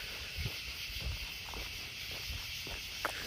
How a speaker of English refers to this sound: Wow, down here, the crickets are super loud. I'm not sure if you're even going to be able to hear what I'm saying. A little ambient noise for you for a minute.